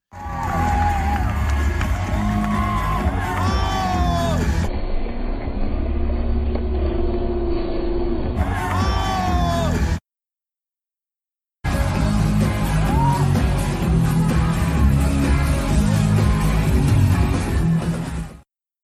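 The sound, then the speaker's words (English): A dense concert crowd roars and yells continuously, with cheering voices layered over loud, muffled bass-heavy music, sounding distorted, recorded on a cell phone, broken by a brief silent gap midway. “you know, everybody in the crowd has their cell phones up.”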